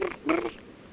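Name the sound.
voice imitating cicada buzzing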